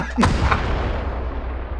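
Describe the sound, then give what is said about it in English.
A single heavy cannon blast booms out sharply, then rolls into a long, low rumbling decay that lingers for over a second with no voices present. “I reach level 3 and my ass becomes a cannon. Fire in the hole.”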